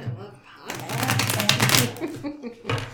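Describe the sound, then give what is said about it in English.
Tarot cards being shuffled: a steady, papery riffling and flicking that starts after a brief pause and continues for about two seconds, with a faint voice murmuring underneath. “Both of you, I think, should shuffle just a little bit, and we'll ask.”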